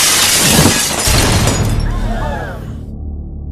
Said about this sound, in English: But before he can, the Wraith smashes through the skylight of the warehouse.